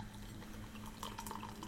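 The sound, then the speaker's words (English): Gluten-free, probiotic, Moscow Mule-inspired kombucha pours steadily into a glass, a continuous trickling splash with a few brighter drips near the end, over a faint low hum and no talking. “And the pour.”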